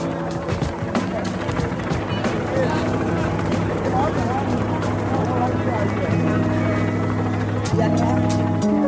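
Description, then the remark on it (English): Helicopters flying overhead, chasing people away, make a loud, steady drone with a sustained low mechanical hum throughout, continuous, while indistinct voices murmur underneath. “Helicopters are chasing the people away.”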